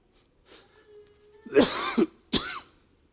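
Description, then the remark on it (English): A couple of harsh coughs burst out after a soft throat-clearing rumble, the second cough following quickly after the first, with quiet pauses around them and no talking. “If you got a cough, people can think there's an earthquake going on or something.”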